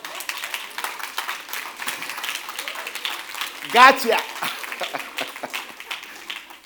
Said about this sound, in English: Fact, that's the part where you clap.